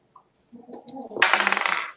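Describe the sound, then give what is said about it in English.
Dice rattle and click as they are re-rolled during a tabletop game after both came up ones. A few light taps come first, then a bright, busy clatter for about a second before settling. No voices. “Gonna re-roll those.”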